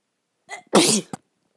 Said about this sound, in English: sorry, I had to sneeze. I don't know how to edit that out, so I just have to redo all of this.